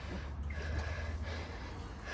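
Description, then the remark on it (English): Heavy, forceful breathing from a person in ice-cold water practising the Wim Hof method, with snorting, gasping breaths in quick succession over a steady low rumble and no talking. “Gotta focus on the breathing.”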